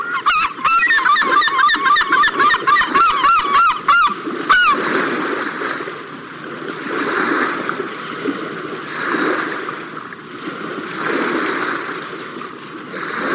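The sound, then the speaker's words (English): A bathing herring gull gives a loud, rapid run of repeated calls, then falls quiet as steady splashing and rushing water continue for several seconds while it ducks, tosses water on its back and works its wings and tail, rising and easing in gentle waves. “watched as this herring gull ducked, tossed water on its back, and then worked its wings and tail like a hand pump, forcing the water through his feathers.”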